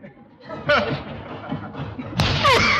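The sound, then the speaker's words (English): A man takes a running start and slams heavily into a padded tackling sack with a dull thud, leaving the sack lopsided, amid excited vocal sounds like laughing and groaning, including an earlier smaller impact. “You knocked the wind out of yourself. No, I didn't. I feel great. Gosh, look at that sack. It's all lopsided.”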